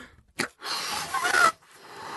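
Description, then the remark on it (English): A quick sharp intake of breath, then a steady breathy rush of air blown into a balloon for about a second, with a faint thin squeak near the end, fading to soft hiss. “I have a balloon. I'm just going to stretch it there and I'm just going to blow it up.”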